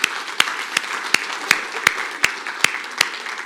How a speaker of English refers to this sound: So everybody who's done that and everybody who's given that a good shot, congratulations, because today we've read through the New Testament. Why don't we give everybody who's done that a big round of applause?